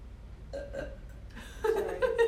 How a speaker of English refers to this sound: Sorry. You could smell a burp, right?